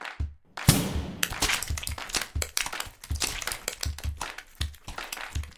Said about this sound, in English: Cue meat sauce cannon.